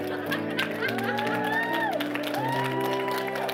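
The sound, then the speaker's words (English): A church audience claps steadily in rhythm, fairly loud, over sustained organ-like music with shifting chords, and a few scattered voices call out in the background. “The psalmist said to clap your hands, all ye people.”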